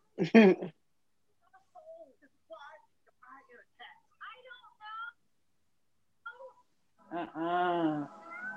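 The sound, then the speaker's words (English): A cat meows loudly, then makes a string of soft, faint chirpy sounds before letting out another long, drawn-out meow at the end. “The cat's going.”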